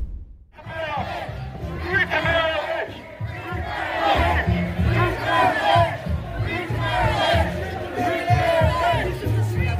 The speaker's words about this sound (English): People are chanting Free Tamara Litch. Look at the crowd. 1st of July, Canadian Day, marching for freedom in downtown Ottawa. Now, that's not a small crowd. That's a big crowd of people